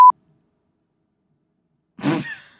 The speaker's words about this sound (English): What beeped at me? I don't know. Oh, there's a beep. I heard that. It was so scary. We were like, what? I was like, what? There's a beep left in from a previous episode. Just leave it so that everyone knows what we freaked out about.